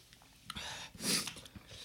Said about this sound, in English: We're sorry for the sniffing, but.